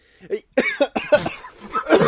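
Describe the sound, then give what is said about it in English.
A fairly loud fit of coughing from a man: five or six harsh, raspy coughs in quick succession, the last few growing stronger, with no talking. “Wow, yeah, I made him cough with that one.”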